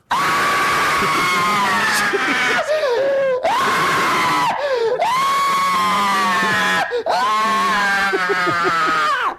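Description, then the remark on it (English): A woman lets out a series of loud, sustained, high-pitched screams in an American horror movie, each long shriek breaking off into gasping wails before starting again, filling the whole stretch. “This is the ultimate scream queen in my opinion.”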